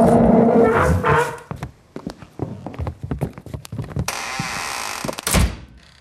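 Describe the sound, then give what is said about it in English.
A refrigerator door is pulled open with a few handling clunks while leftover coffee is put inside, a steady electric hum fills the background for a moment, and then the door shuts with a solid thud. “I'm going to put the leftover coffee in the fridge so we can have iced coffee later if we're in the mood for that, okay?”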